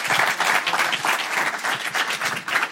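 An audience breaks into steady, sustained applause, many hands clapping at once in a dense, even wash of sound that stays loud throughout without any voices on top.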